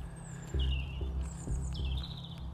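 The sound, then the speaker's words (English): A small songbird sings in the dawn chorus on a chilly, still-dark morning, a few thin, high whistled phrases with sliding notes, over a steady low rumble of background noise. No one speaks. “They sound nice though, even though they're inherently evil. territorial bastards.”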